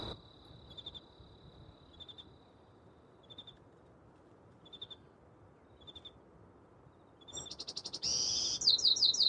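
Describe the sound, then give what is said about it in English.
At dawn, a lone cricket chirps in steady, evenly spaced pulses over a hushed outdoor background, then the first bird song of the day bursts in near the end, bright, rapid and noticeably louder. “There it is, the first song of the day, and maybe the last cricket of the night.”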